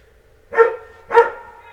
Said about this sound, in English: He hates America, too. Whenever I say the U.S., he starts barking.